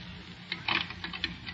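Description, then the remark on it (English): A quick run of small metallic clicks and rattles as keys are fitted and jiggled one after another in the lock of a locked closet door, with no voices. “Locked. Well, that won't keep me out long. Not as long as I still have my keys with me. Try this one.”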